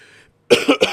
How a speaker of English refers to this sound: Sorry about all the coughing, by the way, guys.